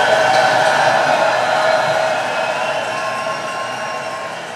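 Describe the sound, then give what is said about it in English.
A big round of applause, a dense, steady wash of clapping that holds strong for several seconds and then slowly tapers off a little toward the end, with no voices over it. “Big round of applause for y'all.”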